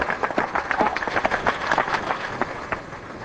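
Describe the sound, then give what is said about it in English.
A large crowd with waving flags applauds Ronald Reagan as he waits before speaking. Dense, rapid clapping and scattered cheering voices form a steady, loud wash of sound throughout. “Let the applause die down. There were waving flags and cheering.”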